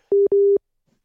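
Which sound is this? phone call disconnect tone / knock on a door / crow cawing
phone call disconnect tone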